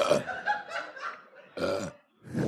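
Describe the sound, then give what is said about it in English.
A loud, drawn-out belch from someone who has been drinking carbonated water rumbles with a few gurgling pulses, then breaks off before a second short burp bursts out. “Sorry, I get a little thirsty sometimes, and the carbonation in the water makes me burpy.”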